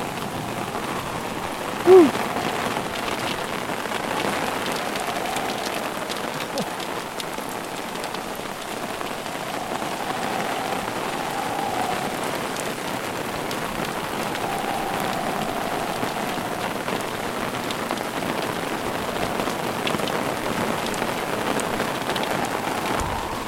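Heavy rain from an approaching thunderstorm pours down steadily, a dense, continuous hiss of drops drumming on surfaces, with no break in the downpour and no voices.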